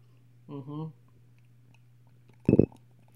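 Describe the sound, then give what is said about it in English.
A short gulp of water being swallowed, a single quick wet burst after a brief hummed vocal sound, over a low steady background hum. “Water time.”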